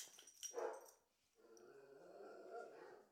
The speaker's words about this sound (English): Shut up, dogs.